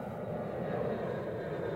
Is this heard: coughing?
no